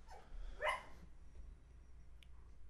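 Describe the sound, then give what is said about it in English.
A dog lets out a single sharp bark, preceded by a softer short yelp, against a quiet low hum with no one talking. “I might have to go stab your dog.”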